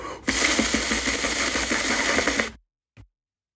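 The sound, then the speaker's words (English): Someone imitates a helicopter with their mouth: a loud, rapid, breathy chopping buzz of steady pulses lasting about two seconds, then silence and a single soft click. “Does this sound like a helicopter?”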